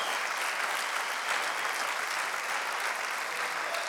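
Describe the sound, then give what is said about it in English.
A church audience applauds the Lord during a morning service, a dense, even wash of clapping hands that holds at a constant level for a few seconds with no voices standing out. “Wants to give an applause to the Lord this morning?”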